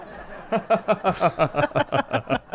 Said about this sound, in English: It's like the sitcom laugh right there. The applause.